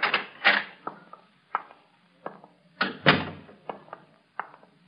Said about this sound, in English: Stand out there and knock.